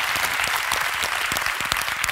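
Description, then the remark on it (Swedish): An audience applauds steadily for Henrik Dorsin, a dense wash of many hands clapping with sharp individual claps popping through, sustained at an even loudness for the whole moment. “Applåd för honom också.”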